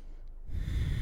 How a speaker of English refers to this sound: Relaxing, breathing, massive inhales.